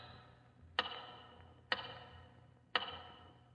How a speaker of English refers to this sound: Once again, your eyes wander to the big tower clock.